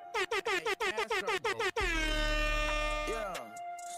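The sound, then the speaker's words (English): A rapid burst of about nine short, blaring air horn sound-effect blasts, followed by one long sustained horn blast that wavers and fades out near the end, loud. “Let me throw on some air horns for that.”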